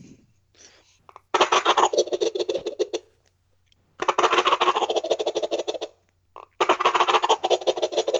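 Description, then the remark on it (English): Three loud, rattling bursts from a shaken Flexstone Thunder Gobble turkey gobble call, each a rapid, raspy, pulsing gobble lasting about two seconds, separated by brief pauses. No one speaks. “There's the Flexstone Thunder Gobble. Sounds pretty good.”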